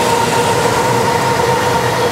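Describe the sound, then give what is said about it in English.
A SkyTrain metro train in Metro Vancouver, run by manual operators, passes with a steady loud rumble of wheels on track and a sustained electric motor whine humming over it, no voices. “Sky trains were only slightly delayed thanks to manual operators.”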